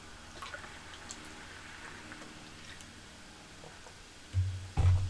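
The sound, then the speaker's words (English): Quiet drinking of water during a water break: faint liquid sounds give way to a couple of louder, low gulps near the end. No one speaks. “Sorry, water break here.”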